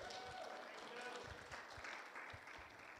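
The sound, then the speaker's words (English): An audience applauds steadily for a few seconds, dense overlapping claps forming a continuous wash of noise, with some murmuring voices mixed in. “And that's really a big clap”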